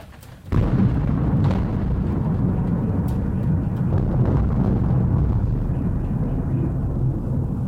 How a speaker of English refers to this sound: Here's that thunder from a little while ago that I thought was the beginning of nuclear war.